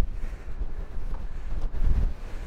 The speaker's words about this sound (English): It's windy up here. Here we are, top of the world.